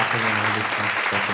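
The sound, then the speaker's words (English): A steady burst of audience applause, dense and fairly loud, with a sustained voice cheering over the clapping, welcoming a surprise special guest. “Everyone, but before we begin, everyone, put your hands together for our first surprise and special guest,”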